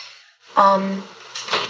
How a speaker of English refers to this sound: Did Bella just fall off the bed? You know, I know. I think she got up and hit the guitar case accidentally.